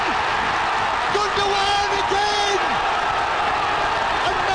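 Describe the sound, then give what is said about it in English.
A raucous home crowd at a City football match roars in celebration of a Kevin De Bruyne goal against Aston Villa in a 3-2 win, a loud, dense, unbroken wall of cheering and shouting, with a few sustained tones rising briefly above the din. “The result sparked celebrations from a raucous home crowd.”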